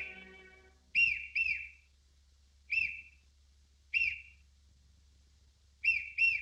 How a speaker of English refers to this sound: At one such party, the little tramp accidentally swallows a whistle, and then, just as the singer is about to perform a song, he gets the hiccups.